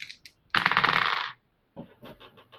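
Dice rolled for a throw roll in a role-playing game rattle in a dense, bright clatter for under a second, then come to rest with a few quick, lighter clicks and taps. No one speaks.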